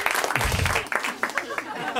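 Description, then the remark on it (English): A crowd at a comedy show in LA applauds and cheers, a dense, steady wash of clapping with whoops and voices mixed in, fairly loud and sustained for the whole couple of seconds. “Oh my God, look at this crowd.”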